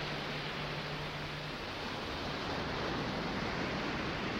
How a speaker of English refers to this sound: Now, when you're standing on a beach and you're listening to the ocean, you might not be aware of some of the subtleties that are affecting you. For instance, waves on a beach create waves of infrasound.